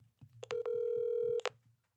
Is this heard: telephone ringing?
yes